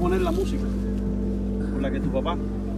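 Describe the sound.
Inside an old car as it drives, a steady, loud low engine drone with a rumbling hum throughout, while muffled voices speak briefly over it.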